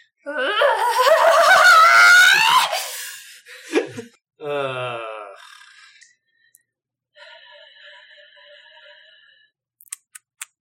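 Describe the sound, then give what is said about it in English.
A voice quietly imitates a primal scream, a strained, wavering wail held for about three seconds, then breathy gasps and a short moaning groan, followed by a faint steady tone and a few soft clicks. “Well, then, imagine a primal scream. I will approximate it quietly.”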